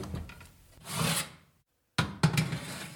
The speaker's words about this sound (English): if you open up the oven, I'll slide in the tray of cake tins.